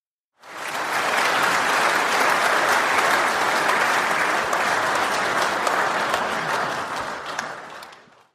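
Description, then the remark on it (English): A burst of sustained applause from many hands, a dense steady clatter starting abruptly and holding loud for about eight seconds before tapering off at the end. “I think we deserve an applause.”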